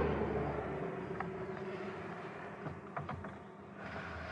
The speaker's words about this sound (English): I'm gonna roll up the window here. It's getting a little loud. There's a lot of traffic on this particular road, but it's a power place.